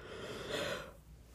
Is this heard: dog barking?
no